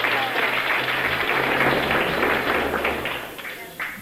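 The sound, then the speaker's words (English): A crowd at a religious meeting in Southend applauds to welcome visiting Irish girls, a steady, dense wash of many hands clapping at an even loudness for several seconds before tapering slightly, with faint voices mixed underneath. “Now give them all a good clap.”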